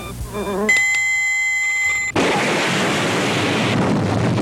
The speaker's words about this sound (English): So here we go. You hear the fly.